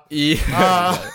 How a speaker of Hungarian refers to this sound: Így köhögök, amúgy, na igen.